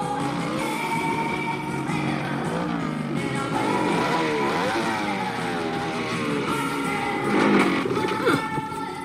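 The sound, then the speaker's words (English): A motorcycle engine, on a bike being fixed up, revs loudly and continuously, its pitch rising and falling through several throttle sweeps, with a final sharp burst of revving near the end. “So Michael's got enough money for a motorbike.”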